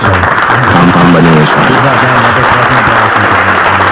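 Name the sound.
applause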